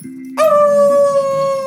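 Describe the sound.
A voice imitates a howl: one loud, sustained, high wail that holds steady and sinks slightly in pitch, coming in abruptly after a brief low hum and carrying on to the end.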